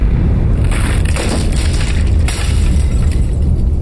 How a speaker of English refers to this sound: A cold breeze gusted icily past me as the last step creaked and the final thump shook the wall hard enough to send another picture flying.